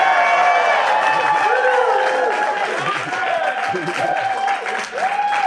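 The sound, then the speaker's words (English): A crowd applauds in a steady, dense wash of clapping, with cheering voices and whoops rising above it for the full few seconds. “Extra pause for applause.”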